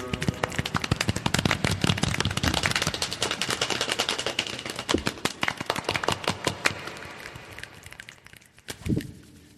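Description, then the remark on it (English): A group of theater kids imitates the start of a rainstorm with dense, rapid clicks and patters, busy and loud at first, then thinning into scattered snaps before a brief louder burst near the end. “It's supposed to sound like the beginning of a rainstorm, and theater kids are like, "Yes, we did it.”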